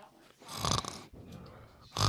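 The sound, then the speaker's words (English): A dog snores loudly into the microphone, two or three rough, snorting breaths with brief pauses between them, slightly distorted, with no voices present. “Are you gonna snore into it?”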